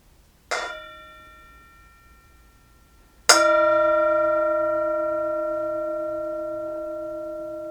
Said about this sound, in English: Here is the bell.